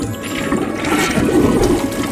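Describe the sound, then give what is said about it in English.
Continuous rushing, gurgling water from toilets flushing in quick succession, a steady loud swirl of flushes overlapping one after another with no voices. “But don't you think you might be wasting a lot of water?”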